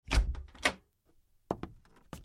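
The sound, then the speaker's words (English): A door to a room opens with a heavy thunk and a brief rattle, followed after a short pause by a few sharper knocks and clicks of the latch, fairly loud. “She opened the door to a room with a table and two chairs.”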